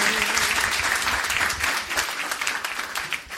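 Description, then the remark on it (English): A church audience applauds a 94-year-old preacher steadily, a dense wash of many hands clapping, holding fairly even and loud before easing slightly toward the end. “A round of applause for you.”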